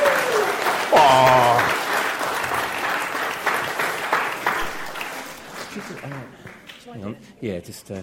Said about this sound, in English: Give this man a round of applause.